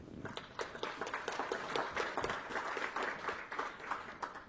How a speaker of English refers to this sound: So I think that's worth a round of applause for MongoDB.